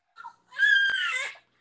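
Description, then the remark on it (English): A baby girl lets out a single loud, high-pitched wailing scream lasting about a second, strained and screechy, preceded by a brief fussy whimper. “Ooh, that scream was crazy, boy.”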